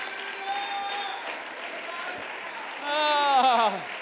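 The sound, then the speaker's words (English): An audience, standing, claps their hands unto the Lord in a steady, dense wash of applause, with sustained voices singing or calling out over it and a louder rising-and-falling vocal cry near the end. “Come on, let's stand to our feet and clap our hands unto the Lord.”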